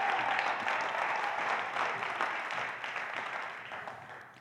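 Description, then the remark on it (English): A crowd claps together in sustained, dense applause, a steady wash of hand claps that gradually fades in loudness over a few seconds, with no voices standing out. “a round of applause for what they're”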